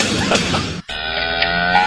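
A burst of rough, crashing noise breaks off, then a cow lets out a long, steady low moo, loud, with no one talking over it.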